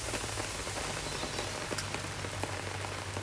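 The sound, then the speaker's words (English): Steady rain falling and pattering on a surface, a dense continuous hiss with scattered sharper drops, moderately loud, with a low hum underneath and no voices. “Listen to this rain.”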